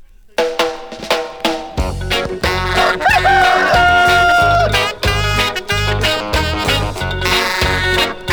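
A rooster's crow, a rising call that holds a long, bright note, sounds over upbeat music with a steady bouncing beat and strong low rhythm.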